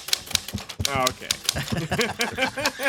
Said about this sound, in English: Put my typewriter away. That's not writing something down. That's typing something.